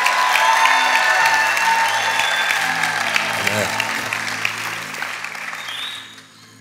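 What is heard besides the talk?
audience applauding and cheering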